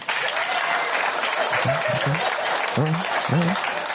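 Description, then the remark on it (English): A stand-up comedy audience claps loudly and steadily for the whole stretch after being asked to clap if they've done drugs with their parents, a dense wash of hands, with a few short vocal whoops or calls rising over the applause toward the end. “Clap if you've done drugs with your parents.”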